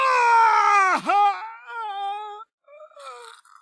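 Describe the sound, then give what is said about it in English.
A basic enemy in Yharnam gives a strained death scream as it is killed in a video game: a loud, tonal wail that wavers and plunges sharply in pitch, then breaks into lower, gurgling moans after a brief gap. “When you kill them, they'll do this like gurgling scream as they die.”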